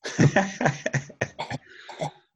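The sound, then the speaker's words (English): A person gives a series of short, deliberate coughs imitating a coughing signal used for cheating, several quick bursts in an uneven rhythm, the first heavier and the later ones lighter, with no talking. “And no one realised that someone was coughing and they were cheating.”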